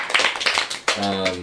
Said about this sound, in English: Kevin Copa. Round of applause for that guy.